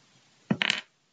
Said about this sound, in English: What do I roll? You roll your hit dice with D10. You roll it 3 times.